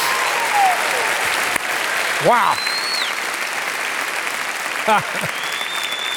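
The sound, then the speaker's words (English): A large audience claps steadily for Jesus in a dense, continuous wash of applause, with a few whoops and cheers rising above it and a single voice exclaiming briefly. “I think it could be a better clap than the one you just gave.”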